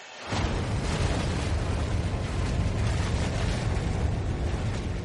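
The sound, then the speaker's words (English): A volcanic hypereruption blast bursts in abruptly after a brief lull, then holds as a loud, dense, unbroken roar with heavy low rumble for several seconds. It is heard as far as Salt Lake City and measures over 150 decibels 2,000 miles away. No voices are heard. “The sound of the blast is so loud that even as far as 2,000 miles away, it measures more than 150 decibels.”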